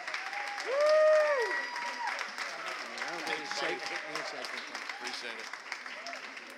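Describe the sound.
A crowd claps steadily and densely for several seconds, welcoming a speaker as he comes up to the front, with a loud whoop rising near the start and scattered cheering voices mixed into the applause.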